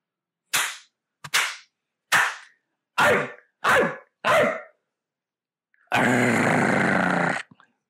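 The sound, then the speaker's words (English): A voice mimics a dog: a few sharp, quick bursts lead into three short barks, then a loud, sustained, rough growl lasting over a second, with no talking. “I think three barks. Arrgh. And a deep growl.”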